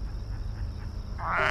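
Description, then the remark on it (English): A frog croaks in a short series of soft, rhythmic pulses, then a louder, brighter croak swells at the end, with no one talking. “That's a frog.”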